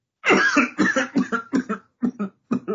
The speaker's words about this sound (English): And just saying that both makes me cough and laugh at the same time.